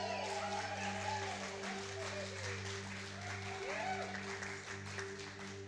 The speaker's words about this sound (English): Now, you realize you're setting a precedent of applause, because I expect that next time I speak, all right?